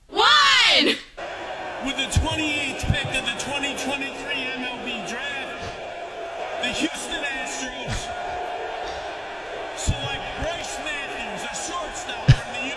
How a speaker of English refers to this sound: Now, why are they booing? They're not booing Bryce Matthews. They're booing the Houston Astros because everybody hates the Houston Astros.